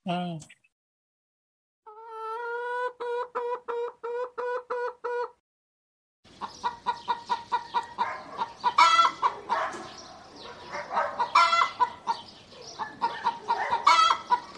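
A steady run of rhythmic, repeated clucks gives way to a busy flock of chickens clucking and squawking over one another, fairly loud, continuing in overlapping bursts to the end, on a regenerative egg farm.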